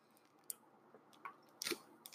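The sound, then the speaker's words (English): Quiet sipping of Kirkland sparkling water: a few soft wet clicks and small slurps, with a brief, brighter fizzy gulp near the end. No one speaks. “So I'm going to take a little bit of a sip here.”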